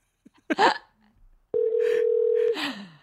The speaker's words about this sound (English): What if the rest of the podcast is just us talking while there's a ringing?